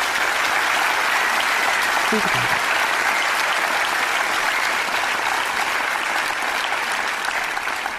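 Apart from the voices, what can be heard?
audience applause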